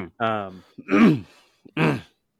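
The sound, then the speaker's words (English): A person clears their throat into a microphone: three rough, voiced bursts, each about half a second, with short pauses between. The middle one is the loudest and harshest, and no words are spoken. “Clearing your throat on a microphone for a podcast is always great.”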